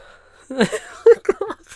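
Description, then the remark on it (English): A voice imitates heavy breathing, mimicking Austin Butler and Olivia De Jong as Elvis and Priscilla leaning in for a kiss in a film scene: about five breathy, half-voiced gasps and sighs in quick, uneven succession, moderately loud, after a brief quiet start, with a faint whimpering quality. “So all you could hear was Austin Butler and Olivia De Jong playing Priscilla and Elvis, leaning in for a kiss, just breathing in each other's mouths, just like...”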